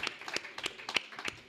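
Audience applause for a contestant at a quiz show: a quick patter of many hands clapping at once, sharp irregular claps blending into a steady crackle, fairly soft and with no voices over it.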